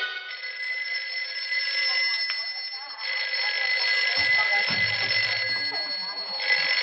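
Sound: telephone ringing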